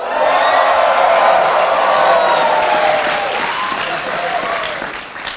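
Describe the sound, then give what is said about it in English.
A live audience at Dragonsteel MiniCon bursts into sustained applause mixed with loud cheering, screams and whoops, holding steady for several seconds before beginning to taper off slightly at the end. “By the way, we are live at Dragonsteel MiniCon. Hi, everybody. Scream for us.”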